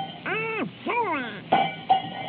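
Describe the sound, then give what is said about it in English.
Two sharp metallic clanks of a cowbell rung by Donald ring out in quick succession, following a pair of warbling, rising-and-falling vocal sounds. “Oh, Donald, I said no. Give me that cowbell.”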